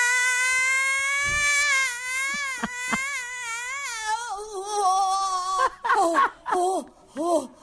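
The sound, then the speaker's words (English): Yoko Ono's scream therapy, posted as her reaction to Donald Trump's election win: a long, loud, high-pitched wailing scream that wavers and quivers for several seconds, then breaks into a series of short, strained cries with brief gasps between them. “It's scream therapy.”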